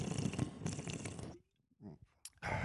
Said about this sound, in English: That's my extremely massive cock-sized can of Red Bull that I was just taking a sip of.